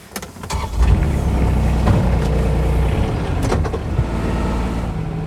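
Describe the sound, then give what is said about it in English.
A Polaris off-road utility vehicle driving, crossing above a waterfall, its engine a steady low rumble with harmonic drone, punctuated by a few sharp clanks and knocks from the chassis over rough ground. “We're just actually above the waterfall, but we're going to cross above the waterfall in the Polaris just now.”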